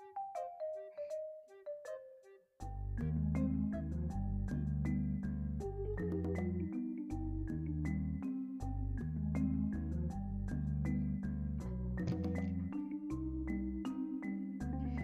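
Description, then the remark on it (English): A bright electronic phone notification melody for incoming text messages plays without stopping. A few high plinking notes lead in, then a fuller tune with a deep bass line keeps going, loud, with no talking. “Okay, I'm getting a ton of texts and my phone is being”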